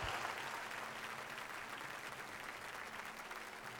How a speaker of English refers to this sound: If you're a teacher, educator, let's give all these teachers and educators a big round of applause.